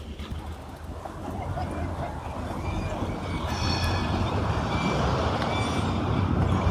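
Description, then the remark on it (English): Dense, steady rumble of idling engines from stalled street traffic in a traffic jam in Amsterdam, growing slightly louder, with faint high-pitched beeps or horn tones drifting over the drone. “And we're stuck by a traffic jam.”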